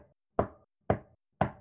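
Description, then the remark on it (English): Sharp wooden knocks tap out the Morse code SOS signal in a steady, evenly spaced rhythm. Each knock is a loud crack with a short decay. There are no voices, just the knocking on its own. “I've got a Morse code message for everyone.”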